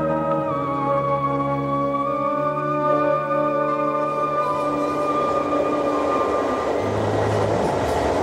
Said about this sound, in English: it's now 3 o'clock in the morning, and I'm on an Amtrak train, heading towards New York. I think right about now I'm in Syracuse, Ohio.